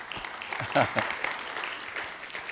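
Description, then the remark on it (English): A church audience applauds the fathers on Father's Day. Many hands clap steadily in a dense wash at moderate volume, with a few voices cheering through it around the middle. “Y'all want to clap for the fathers?”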